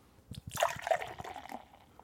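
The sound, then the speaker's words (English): Beer is poured aggressively into a glass, splashing and fizzing for about two seconds, with a burst of bright sloshing that tapers off into bubbling. “Well, I poured it pretty aggressively.”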